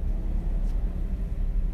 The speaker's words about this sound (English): I'm on Newport Road and there's traffic and I'm like, shoot, I gotta merge into this one lane out here in Menifee. It's always like this.